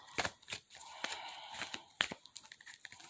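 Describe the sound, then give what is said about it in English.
A deck of tarot cards being shuffled, with quick papery riffles and rustles in irregular bursts, fairly quiet, with no talking. “Hold on, yeah, I'm still shuffling.”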